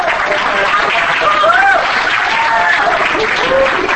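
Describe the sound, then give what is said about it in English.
An audience claps steadily for about four seconds, a dense, even wash of many hands with no break, while voices murmur faintly underneath. “Thank you for clapping down.”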